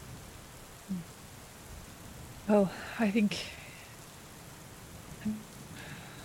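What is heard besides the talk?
rain and thunder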